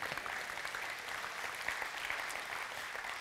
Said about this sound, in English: So really, coffee's the only thing y'all clapped about today while I was preaching. I preach this whole sermon, no clapping. I talk about coffee.